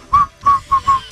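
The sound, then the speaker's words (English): A person whistles a short song melody, five quick, bright notes in a bouncy rhythm with brief gaps between them, no talking. “Whistling.”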